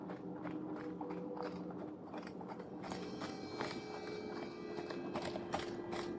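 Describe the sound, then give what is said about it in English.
Steady clip-clop of horse hooves at a walking pace as a horse is ridden through a forest, rhythmic, over a continuous outdoor ambience with a faint tonal hum in the background. “One day, a father was riding his horse through the forest with his young son aboard.”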